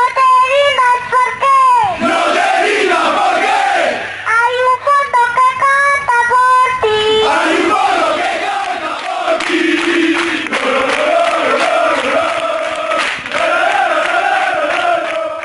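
A 4-year-old girl's high voice, amplified through a megaphone, leads a rhythmic football chant in Spanish, and a loud crowd of the team's die-hard fans shouts the lines back in unison before a local derby, the call-and-response repeating throughout.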